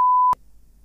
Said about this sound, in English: Well, I'm just going to say it. You're probably going to have to bleep it out, but she's pretty sure you went to see it with.